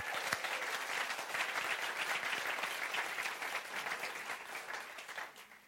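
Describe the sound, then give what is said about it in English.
A crowd applauds the dads steadily, dense overlapping claps forming a sustained wash of sound that holds for several seconds before starting to taper off at the end. “So well, let's give the dads a clap again.”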